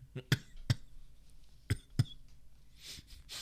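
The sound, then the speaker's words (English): Two pairs of short, harsh coughs from a person with bronchitis, fairly loud, separated by a brief pause, followed by a faint breathy rasp at the end. “And my bronchitis, I'm not going to go into a full-out cough.”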